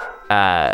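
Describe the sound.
A single loud bark from a pet dog named Dave, a short, strongly voiced yelp whose pitch sinks slightly before it cuts off, with quiet background before it.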